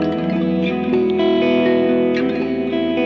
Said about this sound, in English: So here's like a kind of long reverb I have on the HX. So it's like a cave kind of sound.